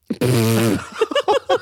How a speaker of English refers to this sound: But he definitely said belch because he burped. Wow. He did a burp.